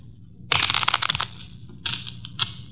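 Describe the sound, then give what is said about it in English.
A new deck of playing cards is riffled and shuffled: a crisp burst of rapid flutters, a pause, then a shorter second riffle and a quick snap, with no one talking. “Here's a new deck. Shuffle them”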